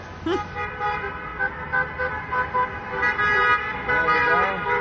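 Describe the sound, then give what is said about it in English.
Car horns honk repeatedly over a steady rumble of vehicles passing in a Trump rally parade along Ventura Boulevard in Encino, overlapping toots blending into a continuous, busy din with faint voices mixed in. “There's a lot of cars here.”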